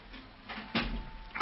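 A dull thump at a door, fairly loud, followed a moment later by a lighter clatter, with quiet room noise around it and no one speaking.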